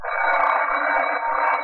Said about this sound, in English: He rings the doorbell again.